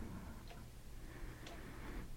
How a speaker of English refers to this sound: Isn't the clicking of the clock awesome? I'm not sure if I want to get rid of that clock or just keep it in there so that when I have pauses, it's there. I could probably gate it out, but that would be no fun.